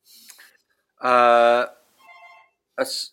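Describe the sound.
A phone rings loudly with one steady, buzzing electronic tone lasting about half a second, with brief bits of voice just before and after.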